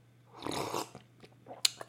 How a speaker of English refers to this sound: Yeah, I'm just enjoying the little Friday morning, you know, sipping my koofies right now. I'm gonna take a little sip. Maybe cover your ears while I sip my koof.